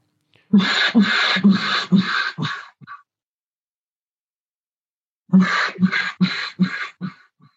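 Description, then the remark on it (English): A duck call blown with voiced air sounds two sequences of about five raspy, grunting quacks each, loud and evenly paced, with a pause between the series and the last notes trailing off shorter. “I'll put some voice into it and kind of almost make a, you know, make grunts into the call as I go”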